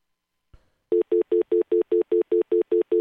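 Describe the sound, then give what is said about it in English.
A soft click, then an incoming phone call rings in a rapid, steady trill of about a dozen evenly spaced electronic beeps, loud, with no one talking. “Looks like we caught a call coming in.”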